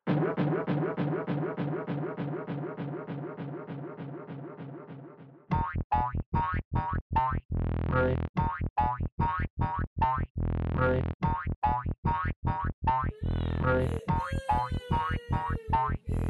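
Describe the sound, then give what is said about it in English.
A loud cartoon boing sound effect repeats over and over in rapid succession, first as a dense blurred stutter and then as sharp, distinct hits, with no talking. “Just do a really loud doink noise.”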